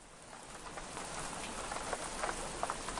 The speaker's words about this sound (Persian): باران شدت گرفته بود.